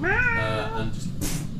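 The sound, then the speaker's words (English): A person voices a single drawn-out meow, imitating a cat, with a rising then falling pitch, fairly loud, followed by a brief breathy hiss of noise. “With that sound, made meow.”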